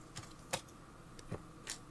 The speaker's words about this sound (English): Sorry, I slapped my keyboard and started a video.